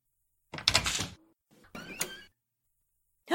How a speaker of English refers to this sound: Open the door